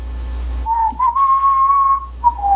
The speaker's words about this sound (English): When I was in the dryer, and I kept whistling.